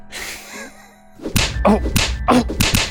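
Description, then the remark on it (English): After a brief quiet hiss, a run of dull punching thuds and slaps lands in an uneven tapping rhythm, some blows short and some spaced out: punches tapping out Morse code. “I'll punch in Morse code.”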